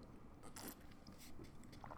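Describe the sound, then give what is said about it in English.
Wet sipping and chewing of boba tea, a few short bursts of mouth noise and slurping over about two seconds, fairly quiet with no talking. “Hold up, let me take a sip of boba, guys.”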